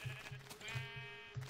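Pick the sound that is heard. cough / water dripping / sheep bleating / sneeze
sheep bleating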